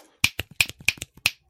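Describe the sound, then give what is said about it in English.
Loud, crisp finger snaps, about seven in quick succession, the stronger ones alternating with slightly softer snaps in an uneven rhythm. Each snap is a sharp, bright crack with no talking. “is how loud his finger snaps are.”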